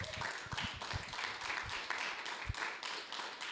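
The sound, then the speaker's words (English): A crowd applauds in a steady, dense round of clapping lasting several seconds, with many overlapping hand claps forming a bright, sustained wash of sound. “So give you guys a round of applause for coming out tonight.”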